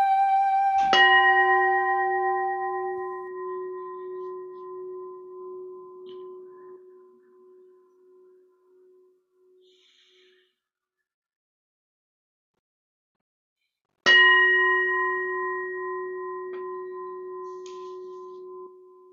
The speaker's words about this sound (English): The sound of the bell also calls us home.